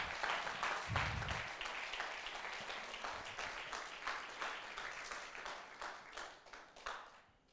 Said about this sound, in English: Let's celebrate the box called the Ark of the Covenant. Are you clapping?